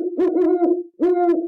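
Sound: owl hooting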